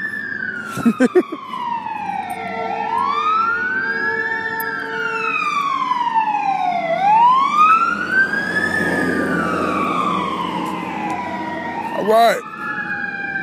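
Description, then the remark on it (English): Two fire trucks pass with sirens wailing in slow rising and falling sweeps, loud as they pass, with engine rumble underneath and a few brief words spoken at the start and end. “I myself, lately, wait a minute, gotta let the fire truck pass because you won't be able to hear me.”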